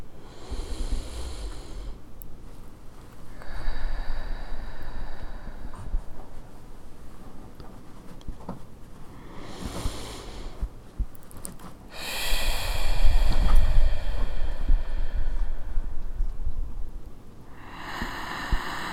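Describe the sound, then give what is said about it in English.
Five slow, deep breaths drawn in and let out, with long airy inhales and exhales at an unhurried, steady pace and no talking. “So wherever you are in the land, in the world, in your body, join me with 5 deep breaths.”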